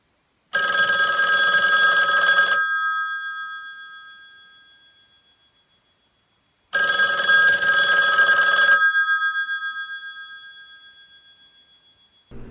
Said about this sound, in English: And he's laying there for a little bit, and then he wakes up and he realizes that he woke up because the phone is ringing.